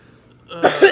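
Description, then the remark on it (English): A person who has been sick for over a month coughs, a short rough burst of two or three hacking coughs after a moment of near silence, with no talking. “I'm sure you're hearing me cough.”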